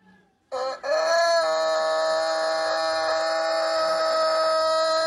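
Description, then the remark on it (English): A rooster crows loudly in one long, sustained, harmonically rich call that starts abruptly after a brief quiet moment and holds steady for several seconds, like a blaring alarm. “This thing is not a snooze. Yeah. This is a straight alarm.”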